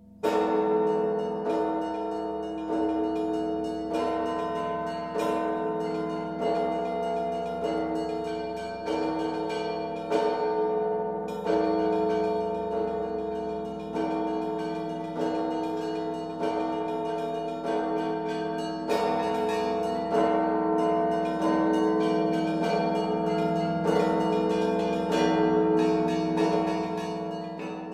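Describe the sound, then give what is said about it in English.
A peal of church bells, rung by a bell ringer, rings continuously from a bell tower, overlapping strikes building into a dense, clanging wash of ringing tones with a steady rhythmic pulse, loud and without any voices. “very cross to have this sort of madman up there in the bell tower. But most people adored him. And we recorded him”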